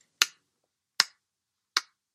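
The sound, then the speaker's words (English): An ironic slow hand clap: three sharp, crisp claps spaced evenly about a second apart, each snapping off quickly, with silence between and no voices. “It was a slow clap, as in an ironic kind of, well done, you fucking idiot.”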